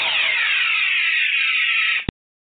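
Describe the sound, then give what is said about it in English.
A sci-fi phaser sound effect: a loud, buzzy electronic tone whose pitch slides steadily downward for about two seconds, then cuts off abruptly with a sharp click. “I had to get out that phaser, regrettably, once again.”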